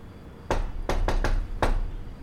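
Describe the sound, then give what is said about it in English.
Five solid, fairly loud knocks on a door: a single rap, a short pause, three quick knocks, then one final knock, with no voices. “Please, knock.”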